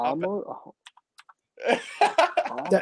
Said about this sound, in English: I'm typing.